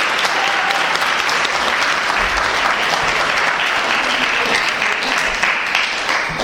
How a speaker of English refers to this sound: Congratulations, all of you. Could we have a round of applause?